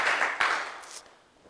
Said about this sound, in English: Clap your hands together for Jesus and you may be seated.